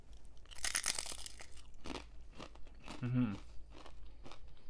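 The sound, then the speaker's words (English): Loud crunching of a homemade fried tortilla chip, sharp crackly bites followed by steady chewing, with a brief muffled voice-like murmur partway through. “I fried some tortillas and made chips. I'm gonna try one now.”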